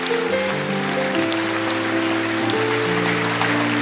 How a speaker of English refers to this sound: Oh yes, you can clap to Jesus on that one.